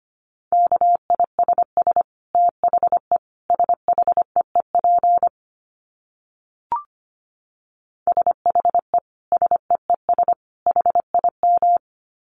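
A single steady beep tone keyed on and off in rapid Morse code bursts of short and long pulses at 25 words per minute, with one sharp click midway and a brief gap, clear with no voices.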